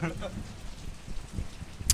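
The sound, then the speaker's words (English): Steady rain patters in the background, a soft continuous hiss with scattered drops, while a few faint speech-like sounds and a brief sharp click come through near the end. “But yeah, we're here. It's raining. It's wet.”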